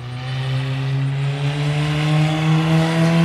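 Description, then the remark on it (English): A race car engine drones steadily at high revs during a driver's final practice laps on a track, its harmonic whine rising slightly in pitch as the car drives past at a constant, loud level with no voices. “Cole's finishing out his final set of laps”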